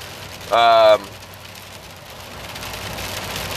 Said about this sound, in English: It's raining outside, if y'all can hear that nonsense.